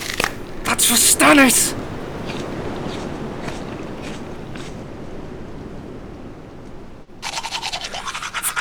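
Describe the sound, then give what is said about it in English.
Someone brushes their teeth with a toothbrush, with a loud burst of rapid scratchy scrubbing strokes at the start, a quieter stretch with soft background noise, then another run of brisk brushing at the end. “My only toothbrush, you...”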